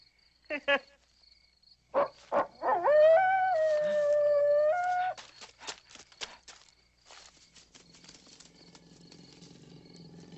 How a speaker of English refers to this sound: Sure is spooky out here. Probably just a dog.